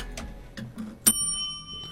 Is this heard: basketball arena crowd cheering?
no